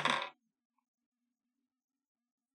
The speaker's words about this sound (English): Uh-oh. I heard a dice roll.